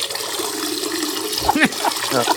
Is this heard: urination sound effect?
yes